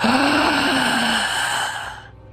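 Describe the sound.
A single loud, gasping inhale of fresh air, breathy with a strained voiced edge, lasting about two seconds before trailing off, as a man who had been holding his breath in a sealed casket shoves the lid open.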